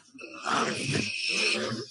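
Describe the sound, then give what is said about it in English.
A loud, harsh sneeze, drawn out into a raspy, breathy blast lasting over a second after a brief quiet start, with no talking around it. “Bless you.”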